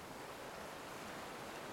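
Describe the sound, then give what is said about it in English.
A soft, steady wash of ocean surf rolls on without a break, with no distinct single crash standing out. It is fairly quiet, and nobody speaks. “Just like the waves crashing, this happens naturally.”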